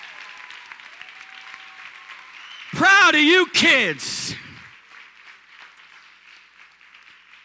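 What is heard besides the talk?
audience hand clapping applause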